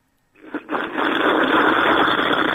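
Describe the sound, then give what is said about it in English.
A long, loud slurp: after a moment of silence, a brief sucking burst gives way to a steady, airy, rushing draw of liquid that holds to the end, with no voices. “Now, that's either a train going through a tunnel, or that's the lovely sound of a good slurp.”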